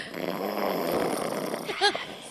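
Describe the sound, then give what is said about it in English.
A man snores in deep sleep, a long, rough, rattling breath that ends in a short nasal snort, fairly loud; recorded about ten minutes earlier. “It's him snoring.”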